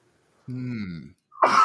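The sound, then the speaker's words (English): A single sneeze: a drawn-out, falling voiced intake followed by a brief pause and then a sharp, breathy burst, loud and isolated with no talking around it. “Excuse me. "Bless you."”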